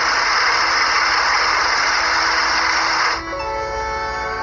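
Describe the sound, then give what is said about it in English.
A blender runs with a loud, steady whirring roar for about three seconds, then drops into a slightly quieter, humming motor whine with a clear pitch. No one speaks. “Activating blender.”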